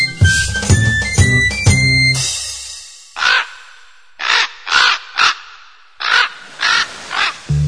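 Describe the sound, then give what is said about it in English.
A raven caws loudly, about eight harsh, raspy calls in uneven clusters, following a brief burst of tonal, ringing sound at the start. “The raven on his shoulder speaks of dark and evil things.”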